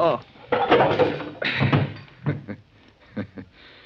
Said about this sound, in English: That's a poke in the jaw I gave you that knocked you out